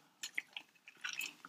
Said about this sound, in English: Sorry, I'm chewing ice.